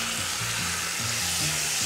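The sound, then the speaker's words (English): Seasoned meat sears in a USA enamel Dutch oven with a loud, steady sizzle, a continuous crackling hiss that never lets up, with soft low musical tones shifting underneath. “You can hear that just amazing sizzle.”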